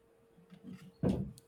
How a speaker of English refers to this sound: Movement. Hear a door opening.